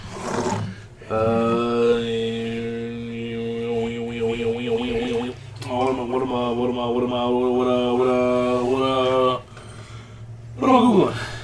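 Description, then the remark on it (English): A cat meows at the door in long, drawn-out wails: two sustained, wavering yowls of several seconds each, then a short final cry. The calls are loud and tonal, with no talking over them. “Hey, don't meow at the door.”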